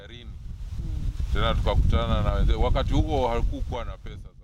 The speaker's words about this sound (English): It was a windy day in a village in the eastern part of Kenya.